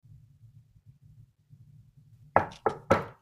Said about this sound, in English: The door is closed. But there is a sign on it that just says, please knock.